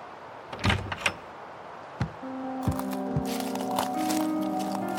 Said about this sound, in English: Jonas opened the tired wooden door of his cabin and stepped outside